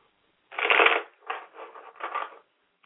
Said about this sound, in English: So I'm shuffling the cards now.